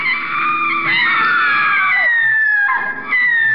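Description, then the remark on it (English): Shrill, sustained high-pitched screaming of frightened children fills the whole stretch, several wailing voices layered together with sliding pitches, loud, with a brief dip before the cries surge again. “Oh, those are the screams of frightened children.”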